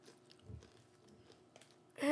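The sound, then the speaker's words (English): Chewing of crunchy, barbecue-flavored, double-crunch coated peanuts, with soft irregular crunches and mouth sounds for about two seconds before a voice abruptly starts speaking at the very end. “You got me with the crunch.”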